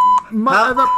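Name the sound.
censor bleep tone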